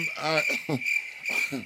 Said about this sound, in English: Roll in the crickets right now. Bitch. Like, cue the crickets.